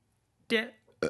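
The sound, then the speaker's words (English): A loud burp rumbles for a moment, then a second shorter burp follows right after, both throaty and voiced with no talking around them. “Damn, another burp.”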